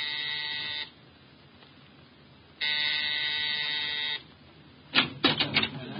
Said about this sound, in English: At exactly 7, I rang Mrs. Collins' doorbell.